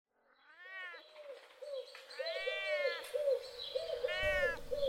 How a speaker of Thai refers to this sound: พอวันที่ปลอดโปร่งฟ้าใสเต้าหู้ก็จะกลับมาเป็นแมวร้องเหมียวๆปกติทั่วไป